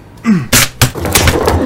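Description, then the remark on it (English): A door is forced open with a shoulder: a low groan, two heavy thuds in quick succession, then a clattering, rattling scuffle as it gives way. “I crashed through the doorway, fumbling almost off my feet.”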